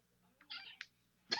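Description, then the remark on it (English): A female cat lets out a short, rising meow followed by a brief chirp, then starts another meow at the very end; fairly soft, with no talking. “She had something to say about that, I guess.”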